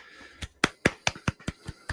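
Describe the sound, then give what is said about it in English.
One person claps about eight times in a steady, brisk rhythm, each sharp clap crisp, with no talking. “I'm so proud finally of my boy, Golf nut. Clap.”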